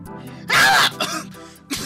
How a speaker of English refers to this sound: Yeah, just a bit of cough. Yeah, it sounds like you guys picked up something on your honeymoon that lasted for 1 week and then was followed up by a week of both of you being bedridden.